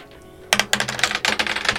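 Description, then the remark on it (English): A quick burst of hard, rattling clicks and clatter as several players roll twenty-sided dice across a tabletop. It starts abruptly after a quiet moment and keeps clattering irregularly without any voices. “I would like everyone to roll a d20 for me.”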